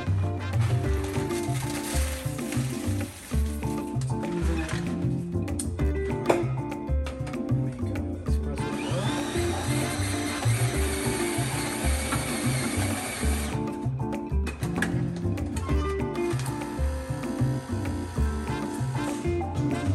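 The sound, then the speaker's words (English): A coffee machine brewing a cup of coffee, a loud continuous mechanical whir with a fast pulsing rhythm, joined midway by a brighter hissing stretch before settling back. No one speaks. “The coffee machine did not work. This one does work.”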